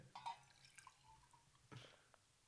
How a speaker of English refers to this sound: There's some water. In a jug?